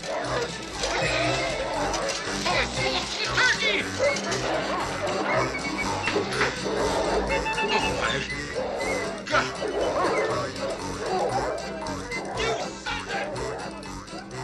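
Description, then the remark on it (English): Several dogs bark and yip excitedly while eating a family's Christmas dinner, through a loud, continuous commotion of clattering and scuffling, with muffled voices mixed into the busy, chaotic scene. “But I want to focus on the final scenes where the neighbor's dogs eat the Christmas dinner and it forces the family to change their holiday plans day of.”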